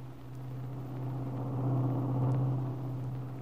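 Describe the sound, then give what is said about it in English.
A big car's engine rumbles steadily from inside the vehicle while it is driven carefully back to Malibu, a low constant drone with road noise that swells slightly in the middle before settling, with no voices. “Kingsley were sitting in the rear of the big car while Max drove carefully back to Malibu.”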